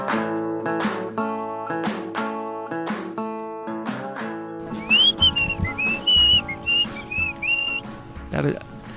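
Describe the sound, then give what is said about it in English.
A person whistles a wavering, broken melody through pursed lips in short sliding phrases, over a steady backing of plucked or strummed chords. “Today seems to be one of those where I can't whistle very well at all.”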